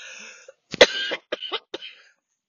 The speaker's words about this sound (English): See, I don't, excuse me, I gotta cough again.